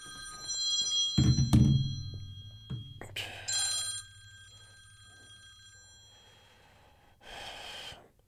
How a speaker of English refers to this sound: Joe Rogan. He keeps interrupting. No, Joe, no. Quit calling me. All right. Let's see. In fact, let me just turn that ringer off there because he'll call back. He always does.